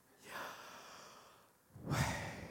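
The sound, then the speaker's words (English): Two deep breaths in a breathing practice: a long airy inhale followed by a fuller, louder exhale with a low rushing rasp, with no talking. “Let's inhale, Yah, exhale, way.”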